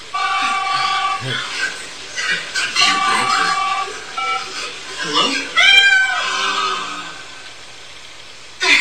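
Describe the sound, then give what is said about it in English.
A cat meows repeatedly in short, bright, wavering cries, fairly loud, in a Baxter cat food TV commercial, mixed with the commercial's voices. “In fact, it's still the only cat food that tastes so good. Cats ask for it by name.”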